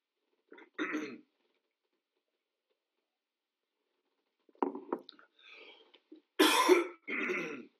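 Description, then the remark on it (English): A person coughs and clears their throat several times, starting with a short burst, then a pause before a cluster of harsh, rasping coughs and throat-clearing sounds, fairly loud. “If I could ask somebody in my house to bring me a glass of water or a cough drop, that'd be great.”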